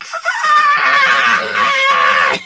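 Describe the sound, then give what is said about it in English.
A man yells at the top of his voice in one long, loud, strained cry held for about two seconds, then cut off abruptly. “They yelled at the top of their voice. In fact, let me demonstrate it.”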